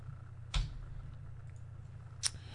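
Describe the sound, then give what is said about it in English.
Two crisp, sharp ticks a couple of seconds apart, like a clock timer sound effect, rising over a steady low hum. The overall level is fairly quiet and nobody speaks. “I'm going to have to put you on the clock”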